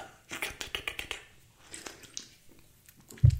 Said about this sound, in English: If there's any of you out there, sip of Pabst Extra 6.5 alcohol content for the working man.